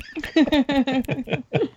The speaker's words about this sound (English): You know you love those mouth noises.